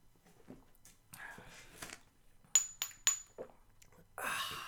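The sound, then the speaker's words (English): Someone sips and swallows rum from a frozen, very cold glass, with three sharp, high ringing clinks of glass in quick succession, then a long, breathy, satisfied exhale at the end. “What were you swallowing there?”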